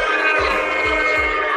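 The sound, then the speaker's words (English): A loud, blaring air horn sound effect holds a steady, brassy tone throughout, with three deep booming thumps landing underneath it. No one speaks. “You see how I did the boot and the air horn?”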